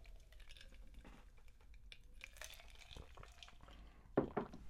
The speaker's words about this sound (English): Drink of water.